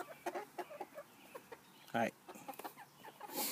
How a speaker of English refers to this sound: Oh. Bye, chickens. Bye, bye, bye, bye. Have a good day. No, you don't get to come out of your cage.